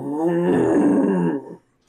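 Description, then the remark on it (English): A voice imitates a low, rumbling roar: one loud, sustained growl lasting about a second and a half, steady and throaty, before it drops off abruptly into silence. “Trent flinches quickly and lets out a low roar.”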